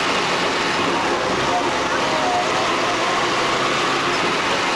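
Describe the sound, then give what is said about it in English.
A bus engine rumbles loudly and steadily as the bus pulls away again from a stop, a dense, continuous roar with a faint murmur of background noise throughout. “And our our super bus takes off again.”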